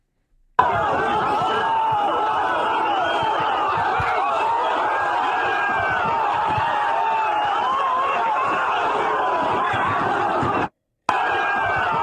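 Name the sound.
crowd screaming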